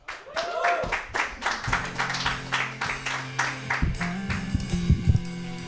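An audience claps steadily for several seconds. A brief rising whoop comes early, and sustained low musical tones play beneath the applause in the second half.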